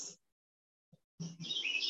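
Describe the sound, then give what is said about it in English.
A loud bird chirps in bright, high-pitched bursts, a short call, then a pause, then a longer run of rapid warbling tweets. No one speaks. “So I just saw the thought, that bird is loud.”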